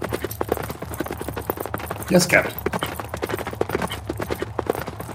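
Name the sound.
horse hooves clip-clopping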